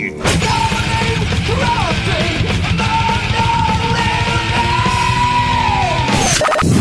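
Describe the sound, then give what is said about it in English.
A person screams loudly in one long, wavering wail that rises and bends in pitch, sustained for several seconds over a dense, crashing wash of noise before cutting off abruptly. “Go ahead, scream.”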